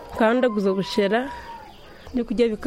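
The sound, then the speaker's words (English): Chickens cluck and squawk in short, loud bursts, with a brief pause in the middle before another cluster of clucks near the end. “It's the most mundane of scenes, smelly chickens, crying babies.”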